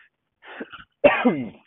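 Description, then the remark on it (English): A short, soft throat-clearing rasp followed by a louder, harsher cough-like clearing of the throat, caused by peanut M&M's stuck in the throat, with no talking. “Got peanut M&M's still stuck in my throat. I should try to fully cough those out before doing a podcast, but this is life.”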